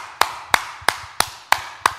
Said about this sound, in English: Hey, man. Let's get a round of applause for that, man. Let's clap for that, man.